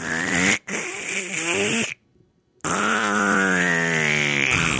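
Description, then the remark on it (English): A person vocally imitates a queef with two drawn-out, buzzy, wavering bursts separated by a short pause. The sounds are loud and made alone, without speech. “Queef, you can just push air out.”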